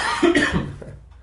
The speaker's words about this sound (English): Sorry about these coughs.